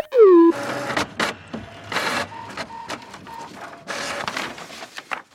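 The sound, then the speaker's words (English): A robot's electronic chatter, from the robot Bezor acting as concierge for a salon makeover: a falling synthetic tone, then busy mechanical whirring and clicking broken by short, steady mid-pitched beeps and boops, with no voices. “You brighten every day with your beeps and also with your boops.”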